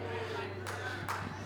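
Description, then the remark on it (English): A few scattered, isolated claps from an audience, three sharp bursts spaced unevenly over a low crowd murmur and a steady electrical hum. “See, we got one clap, two.”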